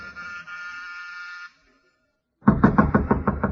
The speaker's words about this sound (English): Through the drawn shades of the living room, I saw the figure of a man. He didn't move when I used the doorbell.